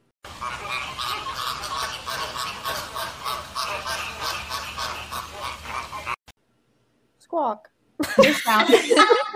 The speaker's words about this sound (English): So they make a lot of interesting noises. If you've never heard flamingos, I will insert flamingo noises now. Here you go. Enjoy.